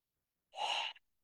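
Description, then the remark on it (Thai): A single sharp, airy deep intake of breath, fairly loud, taken with eyes closed during a guided exercise, lasting under half a second before trailing off into quiet. No one speaks. “อ่ะหายใจเข้าลึก”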